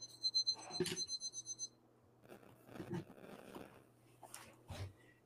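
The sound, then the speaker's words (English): A quick run of high electronic beeps from a new alarm clock, about eight in a row, followed by fumbling clicks and scraping as it is handled and set for tomorrow morning. “I had to set the alarm for tomorrow morning, but my new alarm doesn't know AM from PM.”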